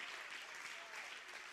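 An audience claps hands to give the Lord praise in steady, dense applause, a broad continuous wash of many hands that stays loud and even throughout without any voices standing out.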